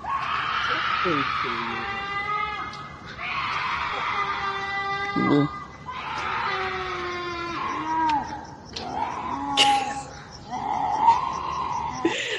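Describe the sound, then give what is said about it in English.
A mountain lion screams: a series of long, harmonically rich wailing screams, shrill and strained like a woman shrieking in distress, repeating over several seconds with brief breaks and occasional sharper yelps. “Mountain cat screams like a woman.”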